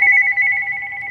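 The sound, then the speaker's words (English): A telephone in a well-heated living room rings with a steady electronic warble, fairly loud, two pitched tones pulsing rapidly for about a second with no voices; the caller is a son phoning from California. “was sitting in his favorite chair in a well-heated living room, ready to talk about Pearl Harbor when the phone rang.”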